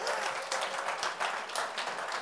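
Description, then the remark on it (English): A crowd applauds audience members aged between 25 and 50 who have stood up, a dense crackle of many hands clapping at an even, sustained loudness with no talking over it. “Right, let's give them a round of applause as well.”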